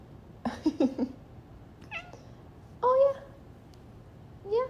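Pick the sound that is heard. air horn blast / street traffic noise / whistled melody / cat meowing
cat meowing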